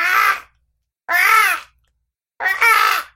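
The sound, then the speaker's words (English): Three harsh, raspy crow-like caws ring out one at a time with short silent pauses between them, each call loud and lasting about half a second, with no talking. “No, it sounds like a crow. It actually sounds very close to how a crow speaks.”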